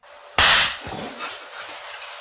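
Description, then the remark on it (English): A firecracker set off next to a man's head in his tiny, dark room goes off with one loud, sharp, close-up bang that rings out and fades, followed by a brief lower thud, over a steady hiss of room noise. “Somebody put off a firecracker next to his head. Another one.”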